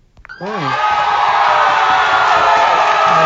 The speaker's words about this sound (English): Everybody, let's give a motherfucking round of a motherfucking applause to the Portland Trailblazers.